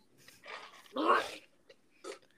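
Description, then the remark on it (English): A single loud, breathy sneeze bursts out in the middle, with a few softer snuffly sounds just before and a shorter sharp noise shortly after. “Sorry. Bless you.”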